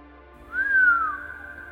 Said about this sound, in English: … leans over for a look and lets out a low whistle.